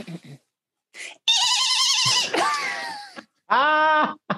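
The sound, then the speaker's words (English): A person imitates a dolphin with loud, high-pitched squeals: a long warbling trill, a falling squeak, then a buzzy sustained call, separated by brief pauses. “Yes, I do a very good dolphin impression.”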